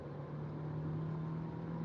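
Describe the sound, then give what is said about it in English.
A car engine runs steadily with a low, droning hum and a strong tonal whine, loud and continuous for the whole stretch with no talking over it. “You hear my engine roaring?”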